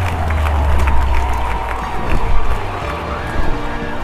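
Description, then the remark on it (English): A large crowd across the land of the Quaking cheers as the Forsaken Beasts disintegrate, a steady, loud roar over a deep low rumble, with scattered shouts and a swell of excitement near the middle before it settles. “You all see across the land of the Quaking as those are cheering, as these Forsaken Beasts are also disintegrating, falling apart, and there is just a wave that goes across it.”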